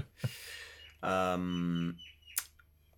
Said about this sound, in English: That bird outside your house has not been to a whispering wall.